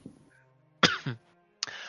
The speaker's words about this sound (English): excuse me. One moment. Had to clear my throat.